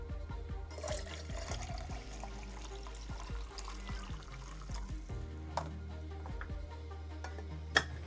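Coffee pours from a thermos in a steady, gurgling stream for several seconds, with small clicks along the way and one sharp clink near the end. No one speaks.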